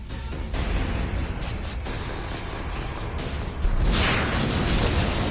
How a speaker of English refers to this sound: As you can see, explosions are going off behind me. The wake of destruction left by this monster is at an unprecedented scale.